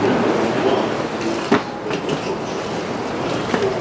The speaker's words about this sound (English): I hope it doesn't smell crabby, but I gotta get on this fucking train.